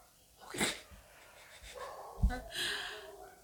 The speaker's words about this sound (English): You can't be yawning. That's my hungry yawn, girl.